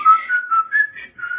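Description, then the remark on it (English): A person whistles the Old Spice jingle, a short, bouncy tune of a few quick notes stepping up and down in pitch, with no talking over it. “Yeah, but still, you posed like Captain Morgan and whistled Old Spice.”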